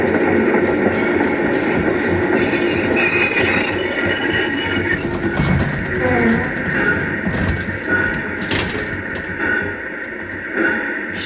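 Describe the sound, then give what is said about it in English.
A train grinds along the track under heavy braking for a boulder on the track, a loud continuous rumble with a steady high-pitched squeal running through it and brief clanks and scrapes. “the brakes! The brakes! What? It's the brakes. Something on the track.”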